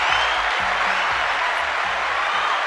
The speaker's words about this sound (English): Was that a new round of applause? Was that a new? No, no. Wow, it really seemed like there was an extra verb in it today.